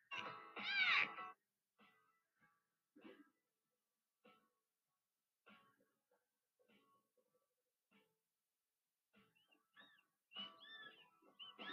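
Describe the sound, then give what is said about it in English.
A young dolphin's warning whistle: a loud, wavering high-pitched burst opens, then faint scattered chirps, and another strong squealing run of whistles closes. No one talks. “Let's do that warning whistle again, boys and girls.”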